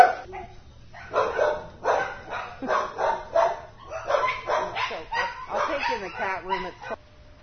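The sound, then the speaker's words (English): Several dogs bark and yip continuously in the dog pens area of an animal shelter, overlapping barks coming in dense bursts, fairly loud, with a low steady hum underneath. “We went into the dog pens area.”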